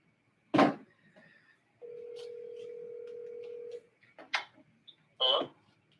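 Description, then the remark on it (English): A steady telephone ringback tone sounds for about two seconds while a dialed call waits to be picked up, framed by sharp clicks and handling noises before and after. No one speaks. “Some of you, you're punching your phone numbers, but you're not picking up your telephone.”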